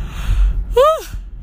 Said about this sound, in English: I have no right to be yawning. Now the rest of you guys are going to yawn.